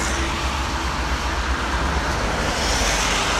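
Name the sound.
passing road traffic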